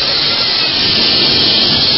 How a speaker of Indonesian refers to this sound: Lagi goreng tempe, goreng tahu, goreng kerupuk, itu suaranya agak kenceng kok.